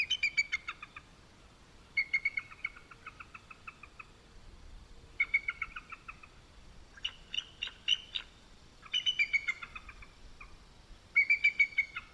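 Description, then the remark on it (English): A bald eagle gives a series of thin, high, delicate chirping calls in rapid stuttering bursts, repeated several times with short pauses between them, clear with no one talking. “Here's a little chirp, surprisingly delicate chirp of a bald eagle.”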